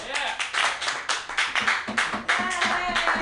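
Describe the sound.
A crowd claps and cheers, with dense, irregular hand claps and excited voices calling out over the steady applause.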